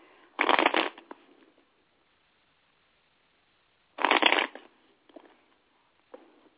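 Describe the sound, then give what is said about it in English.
A deck of tarot cards is shuffled in two quick, crisp bursts a few seconds apart, followed by a couple of soft taps as the cards settle. No one speaks. “All right, Spirit said I got to shuffle it three more times, so bear with me.”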